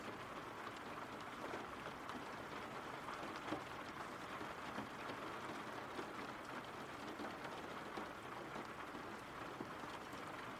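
Steady rain falls without a break, a dense, even hiss of countless drops pattering on a surface, holding the same moderate level throughout with no voices.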